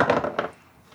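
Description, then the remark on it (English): Big, oversized dice are rolled and clatter across a tabletop in a quick run of hard knocks, fairly loud, then settle into near silence within half a second. “Gotta use these terribly oversized dice. I'll roll mine first.”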